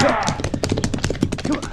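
A horse by a corral stomps on a man with its hooves in a rapid, irregular flurry of heavy thuds and clatters, loud, continuing without pause for the whole moment.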